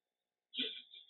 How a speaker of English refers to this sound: So let me tell you, wow, I don't know where all this belching is coming from. Okay. It's usually your gut.